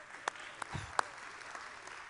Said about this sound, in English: So everybody that's sitting down, let's show some applause for the people who are paying the bills.